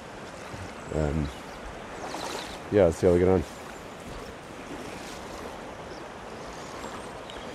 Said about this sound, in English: I'm just a shin depth as I'm approaching up into this this weir. It's a fairly wide weir